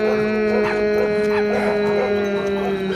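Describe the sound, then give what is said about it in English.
Puppies whine and whimper continuously over food, a bagel, a steady high-pitched keening broken by short yips and excited bursts, with no one talking. “These pups can't control themselves.”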